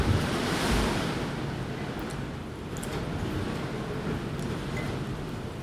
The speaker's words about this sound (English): I will tell you, again, I don't know whether you can actually hear that or not. I imagine that you could, because that was quite a strong gust of wind blowing all around the flat.